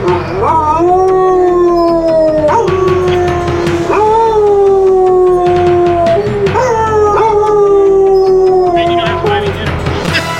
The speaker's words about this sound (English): Here is your prize. It is the Soundhound's jingle, of course. Congratulations to our winning team of Soundhounds. Take it away, boys.